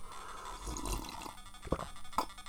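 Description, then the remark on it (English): A quiet, breathy slurp of tap water being sipped from a glass, followed by two short, distinct swallowing gulps about half a second apart, with no talking. “Let me lean over and have a little sip of this delicious beverage here.”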